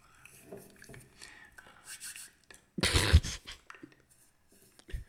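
Soft hands of a boy rubbing together in a few brushy bursts, with one louder, fuller rub in the middle, mixed with quiet whispering in an intimate ASMR style.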